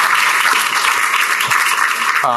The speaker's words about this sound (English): And she deserves a round of applause.